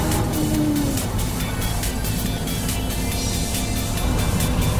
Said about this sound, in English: Sat on the bus, sat on the bus. What can you hear?